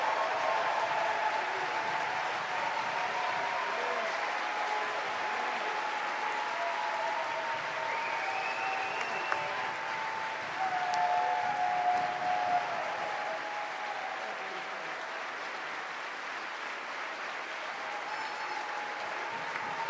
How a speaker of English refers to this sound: Wow. That's loud. That's loud. This is loud. Wow. Was that for me? Those applause? That's crazy.